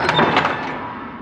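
A heavy door is forced open: a loud, grinding scrape with a few sharp knocks near the start, then a long rumbling tail that slowly dies away. No one speaks.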